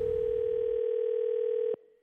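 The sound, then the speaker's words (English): A steady, loud telephone tone holds for nearly two seconds, then cuts off abruptly, leaving a brief faint trailing hum before silence. “Don't ever answer your phone. It could be Freddie Mac. Calling to check his facts.”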